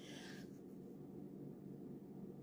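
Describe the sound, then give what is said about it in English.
Tarot cards being shuffled: a brief crisp riffle at the start, then a soft, steady rubbing and sliding of cards that continues quietly with no one speaking. “Oh, something else I want to tell y'all while I'm shuffling these cards.”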